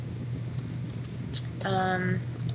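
Light, quick keyboard clicks patter in an irregular stream over a low steady hum, with a brief pitched tone sounding partway through.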